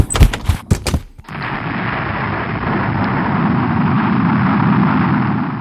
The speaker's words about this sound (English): What kind of car is that? Is that a Ford? I didn't know they made flying rockets.